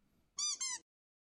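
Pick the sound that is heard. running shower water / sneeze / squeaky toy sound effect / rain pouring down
squeaky toy sound effect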